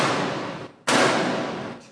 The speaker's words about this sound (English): And he starts banging on the counter.